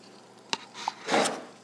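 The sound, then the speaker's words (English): Someone drinks alkaline water from a cup: a sharp tap as the cup knocks against a fridge, a small gulp, then a brief breathy slurp. The sounds are quiet, with no talking. “Here's me drinking it.”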